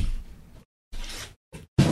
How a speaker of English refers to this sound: Oh here, knock the box on the ground.